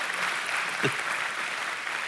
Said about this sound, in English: Yeah, we should applaud the word. It is the word.